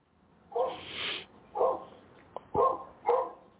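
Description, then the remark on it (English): A dog barks four times in short, sharp bursts spaced about a second apart, clear, with no talking over it. “Now, listen, you know if the dogs can make noise.”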